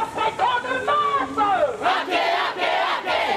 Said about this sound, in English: It was a sea of red, white and black as protesters descended upon Parliament, waving Tino Rangatiratanga flags and chanting, "We will fight for ihu mātou forever."